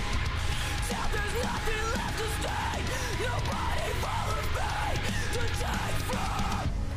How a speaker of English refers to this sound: The fact that she can transition from song to scream back to song is amazing. Like I said, I'm a sucker for singing then screaming.